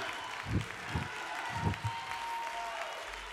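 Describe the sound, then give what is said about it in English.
An audience claps hands in praise in a loose rhythm, several sharp, full claps landing over a steady held tone and a low murmur. “Come on, clap your hands, all you people, and shout unto God with a voice of triumph.”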